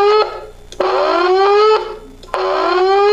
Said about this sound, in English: Now, what I hear is this. This is alarm, Steve.